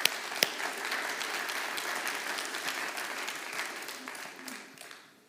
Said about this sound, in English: Somebody clap your hands to the Lord this morning.